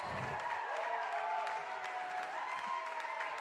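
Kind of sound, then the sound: crowd, audience applause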